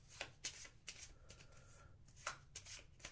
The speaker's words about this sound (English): We'll use this event card. Shuffle these.